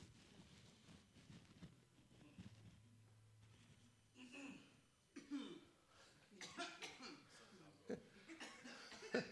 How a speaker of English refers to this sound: You can cough.